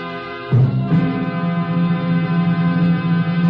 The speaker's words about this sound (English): Three chimes mean good times on NBC.